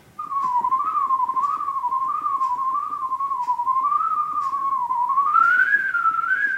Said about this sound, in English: I tried to whistle the pieces I was playing on the cornet. For example, Flight of the Bumblebee.